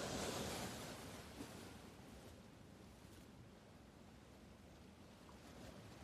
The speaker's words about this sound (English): Let your toes feel the cool turquoise blue water. See yourself staring out to sea, mesmerized by the dancing rhythm of the waves.